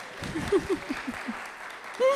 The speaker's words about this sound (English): All right. You can clap if you want.